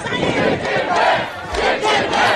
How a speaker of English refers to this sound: So the crowds went down and they were all chanting his name, as you can hear them hear them in action.